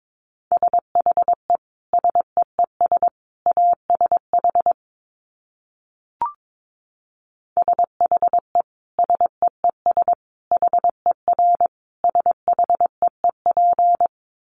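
A single steady mid-pitched beep keyed on and off in quick Morse code bursts of short and long tones at 22 words per minute, grouped into letters with gaps, broken once by a brief click.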